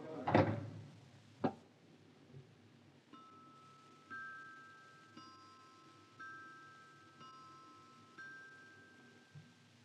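A door closes with a solid thump, followed a second later by a sharper click of the latch. Soft, steady sustained tones then hum on quietly in the background.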